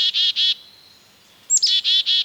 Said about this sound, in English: Now, a couple of energetic black-capped chickadees dart in.